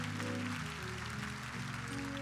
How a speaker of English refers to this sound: Let's give her another rousing applause.